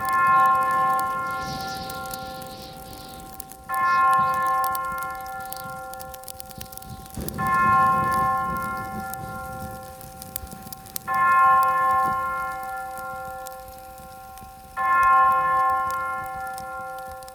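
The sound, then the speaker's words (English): A clock striking ten chimes with deep, resonant bell strokes, five evenly spaced tolls about four seconds apart, each ringing out and slowly fading before the next. No one speaks. “When the clock strikes 10, three ghosts.”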